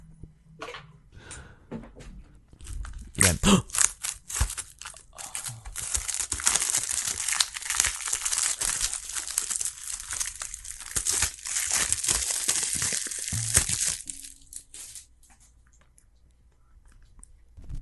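Plastic wrapping on a Blu-ray case is punctured and peeled away, a dense run of crinkling and crackling that builds to a loud, steady rustle for several seconds before tapering off, with no talking.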